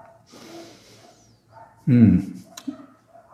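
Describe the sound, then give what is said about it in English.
A dog lets out a loud bark, followed by a shorter, quieter yelp, against a faint, breathy background murmur. “Sounds like the dogs are having their kirtan now.”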